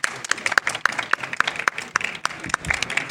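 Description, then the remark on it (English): A live audience at the Federation of Genealogical Societies 2018 conference applauds, with dense, steady clapping and a few sharper individual claps standing out in a fairly regular rhythm, sustained and moderately loud throughout. “You guys give yourself a round of applause.”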